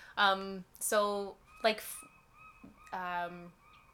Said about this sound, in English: Hello, seagull. There's a seagull. If anybody hears a seagull, it's saying, we live by the ocean. Get over it. Seagull, get over it.